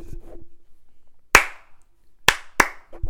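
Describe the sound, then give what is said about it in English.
A few sharp hand claps: one, then after a pause a quick pair, each crisp and bright with a short ringing tail. No one speaks. “a little clap.”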